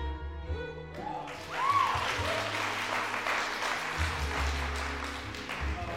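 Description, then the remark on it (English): An audience at a music recital bursts into steady applause, a dense wash of clapping that holds strong for several seconds. A brief musical note sounds at the start, and a low sustained tone hums underneath. “Give her a big round of applause, please.”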